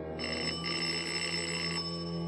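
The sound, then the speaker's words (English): The doorbell of a small house in New York City rings with a bright, sustained electric tone lasting about a second and a half, with a brief dip near the start, over a steady low hum and no voices. “While I waited for the doorbell to be answered”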